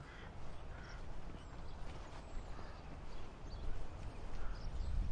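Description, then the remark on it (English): Scattered bird calls ring out over a steady outdoor hum of wind and ambient noise, with no one speaking, on Meadow Lane past St Michael and All Angels Church at South Highcombe. “The noise out here of these birds, I'm never going to get sick of that.”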